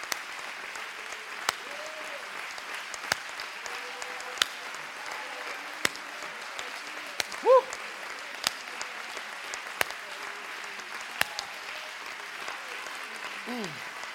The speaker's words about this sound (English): You put your hands together, and when the clap of the thunder is nothing compared to your clap, then you begin to praise your God.